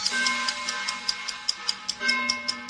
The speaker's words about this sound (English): Get a little ticking of the clock here. Come on, clock. There it is.